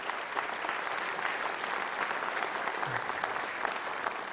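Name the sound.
audience applause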